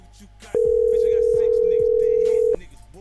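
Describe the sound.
A loud, steady telephone ring tone sounds once for about two seconds over a phone line as a home number is called from a T-Mobile phone, with faint voices murmuring in the background before and after.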